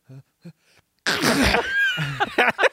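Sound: imitated sneeze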